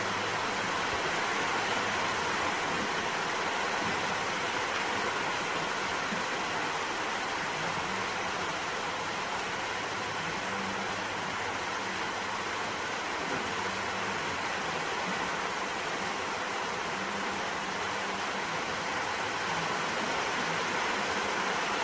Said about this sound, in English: As I hear the rain, I can breathe and enjoy the sound of the rain also. Und wenn ich den Regen höre, kann ich ein- und ausatmen und den Klang des Regens genießen.